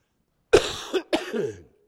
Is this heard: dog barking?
no